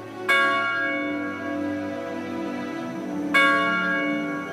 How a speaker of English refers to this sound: After the game, the freshmen went to ring the campus bell, a tradition dating back to the 1890s.